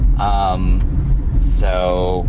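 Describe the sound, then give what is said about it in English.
A steady low rumble inside the cabin of a black Kia Forte car moving in traffic on the Taconic fills the background throughout, with voices speaking over it in two short bursts. “We're in the Kia. We're in my car. We're in my black Kia.”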